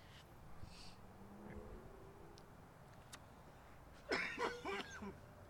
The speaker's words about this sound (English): Bro, it just hits you in the back of the throat, bro. Nah, I coughed harder earlier, though. I know, like, when I really cough hard is when my... I make my chest hurt.